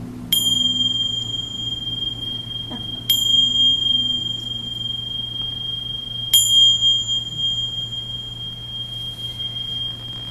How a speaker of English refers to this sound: And I'll ring the bell just to release us in case we're really conditioned to get the bell.